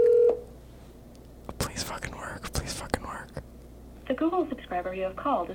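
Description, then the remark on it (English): A phone call being dialed to a burner phone number: a brief steady tone, then a quick irregular run of short dialing blips and clicks, followed by a voice speaking over the line. “We were calling another burner number.”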